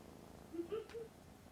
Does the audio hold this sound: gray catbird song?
no